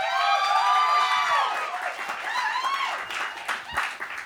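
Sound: audience applause and cheering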